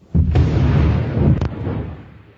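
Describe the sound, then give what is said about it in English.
A massive underwater explosion of a Second World War undersea mine, mistakenly triggered by the pulsing calls of fish, bursts suddenly into a deep, rolling roar, with a second sharp crack partway through before the rumble slowly fades. No voices are heard. “That massive explosion occurred during the Second World War, when an undersea mine designed to detonate in response to the sound of an enemy ship propeller was mistakenly triggered by the powerful, pulsing voices of fish.”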